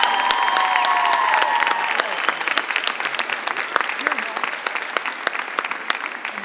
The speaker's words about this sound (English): Let's give this young lady a round of applause.